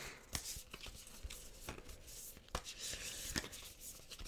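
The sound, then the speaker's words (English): A Divine Feminine Oracle card deck being shuffled, with quiet papery rubbing and a series of soft, irregular snaps and flicks, no talking. “I'm just giving the cards a bit of a shuffle.”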